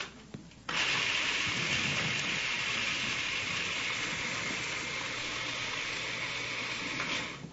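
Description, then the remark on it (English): A food processor kicks on abruptly and runs for about six seconds, a loud, steady whirring roar with a gritty grinding edge as about 1.5 cups of walnuts are chopped fine, then winds down. No talking. “And the food processor really does a good job of finely chopping nuts.”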